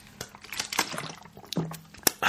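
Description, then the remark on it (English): Sipping and swallowing of soda water mixed with orange juice, with brief liquid sloshes, small clicks and a soft hiss of bubbles over a couple of seconds. “What I'm drinking is soda water mixed with orange juice.”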